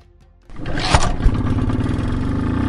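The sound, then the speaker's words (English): A motorcycle engine sputters to life after a brief quiet moment, then settles into a loud, steady idle with a couple of throttle blips, as the motorcycle is made ready for an overnight trip to a village. “Braden and I would be driving our motorcycles loaded with things for Oing Cha.”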